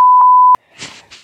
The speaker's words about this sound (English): I guess we have to beep that out